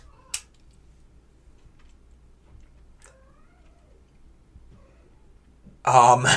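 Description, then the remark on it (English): A cat lets out a loud, harsh, drawn-out yowl near the end, following several seconds of near-silence broken only by a sharp click and a few faint taps. “Our cats, the cat's going nuts.”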